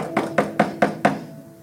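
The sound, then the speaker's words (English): Five quick, evenly spaced knocks on a door, firm, rapping in a steady rhythm with no voices, then fading into quiet. “Job gets 3 knocks on the door”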